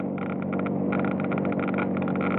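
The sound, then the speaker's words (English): A cold car engine, as in short-hop, stop-and-go driving, idles steadily, its low rumble overlaid with a rapid, regular ticking or clicking that continues throughout. “Hear that faster clicking?”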